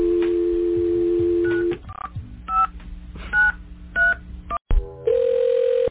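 A dial tone gives way to a quick series of touch-tone beeps as a phone number is dialed for a prank phone call, the short two-pitch tones coming in an uneven rhythm before a steady tone returns.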